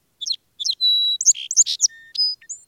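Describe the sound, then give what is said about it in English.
A song sparrow sings a complex, varied song: a couple of short introductory notes, a clear sustained whistle, then a rapid jumble of buzzy trills and chirps, clear with no other sounds. “That complex and beautiful song belongs to the song sparrow.”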